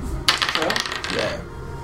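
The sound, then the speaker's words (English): A twenty-sided die clatters onto a hard tabletop with a sharp first hit, then rattles and tumbles in quick, close clicks for about a second before settling into quiet background noise. “Oh, can I have my D20 though?”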